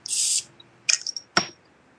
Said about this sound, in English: So I'm going to open this bottle. I hope you guys hear it.